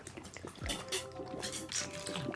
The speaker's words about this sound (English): Okay. Oh, I'll take a drink of water. Water. Water break.